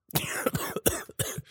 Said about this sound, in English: Actually, I think that we should add a coughing corner as we get older, because I can cough now. I don't even smoke cigarettes, and I can just start coughing.